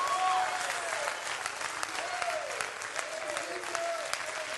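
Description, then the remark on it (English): A church audience applauds steadily, a dense wash of many hands clapping at an even level, with a few faint sustained tones weaving above the clatter. “Oh, somebody clap your hands and rejoice to that right now.”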